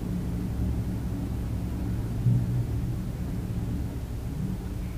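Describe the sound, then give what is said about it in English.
A steady low mechanical rumble hums on without pause, with a faint tonal drone in the bass and a brief slight swell midway: the elevator of an apartment building running, located right next to a room of the apartment. “And when I was going out riding the elevator, I realized it is the sound of the elevator, which is located right next to my room.”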